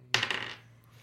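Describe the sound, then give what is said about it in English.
Dice clatter onto a hard tabletop for an Arcana roll in a game, a sharp first hit followed by a quick cluster of rattling clicks that fade within half a second, with a faint low hum underneath. “So I want you to roll 3 Arcana rolls, 1 for each week.”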